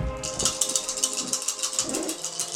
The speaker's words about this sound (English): Throw all the fucking dice on the floor.